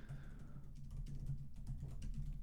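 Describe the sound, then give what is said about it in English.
Quiet, steady typing on a computer keyboard: a run of soft, irregular key clicks over a constant low electrical hum, with no one speaking. “Every time when you were doing that to me, when you were looking at me while you were typing,”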